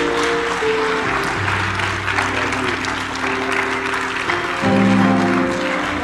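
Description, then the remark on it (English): An audience applauding, giving God a hand of praise, in a dense, continuous wash of clapping that holds steady for several seconds, with sustained low organ-like chords droning underneath and swelling slightly near the end. “If you love the Lord and are thankful for his men that deliver the word of God, would you give God a giant hand of praise today?”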